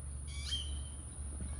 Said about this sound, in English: The birds are like, skareet.